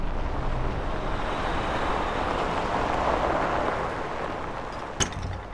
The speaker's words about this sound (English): I'll pull the car around and you go check us in.